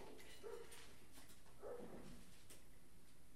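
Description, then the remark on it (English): Two faint dog barks about a second apart, short and slightly yelping, over a quiet background hiss with no one talking. “They responded. Oh, great. Now it's going to be a symphony.”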